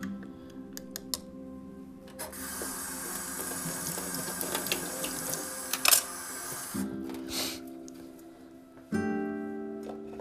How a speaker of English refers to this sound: Nothing like a fresh pot of coffee boiling in a little teapot. That is the best way to make coffee, in my opinion.